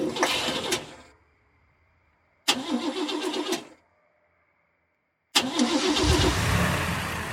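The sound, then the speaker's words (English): A car that has just crashed into the back of a pickup truck cranks in two short bursts that die out, then catches on the third try and keeps running, loud with no voices. “I mean, can it still drive? We can try.”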